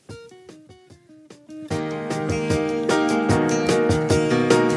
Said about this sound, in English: All right, this is our challenge, and I probably have some good challenge music. Let me see.